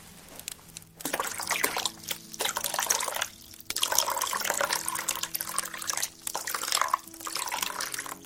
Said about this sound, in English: If I pour the water in right now, it won't be as hot when we have finished with the brushing. I will make sure the water does not get too cold, my lady.